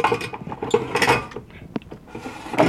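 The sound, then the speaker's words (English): An air fryer's plastic basket scrapes and rattles as it slides into the fryer housing, ending in a few sharp mechanical clicks as it latches. Several brief clatters, moderately loud, with no talking. “And you can hear it click into place.”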